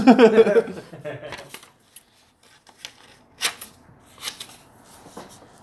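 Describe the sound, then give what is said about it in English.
A brief voice at the start gives way to papery rustling and flicking as someone leafs through a stack of papers searching for one sheet, with intermittent bursts of crinkling. “He's just trying to file through with his yeah. boxing gloves.”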